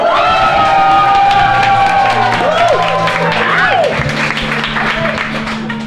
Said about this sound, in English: There must be 200-300 people in here. It's standing room only. Just listen to that crowd.